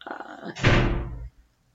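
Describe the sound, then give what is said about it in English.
A door swings shut with one heavy, dull thud that rings briefly and fades, preceded by a faint muffled rustle. “Door.”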